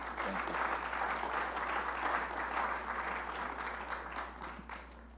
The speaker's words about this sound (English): Yes, you can give God a hand clap of praise.